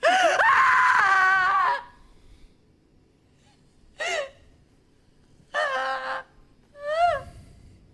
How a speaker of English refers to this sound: And we'll see if you agree or you go, no, that wasn't the best scream. So do I have any other clips to play before that? No, here you go. The number one scream.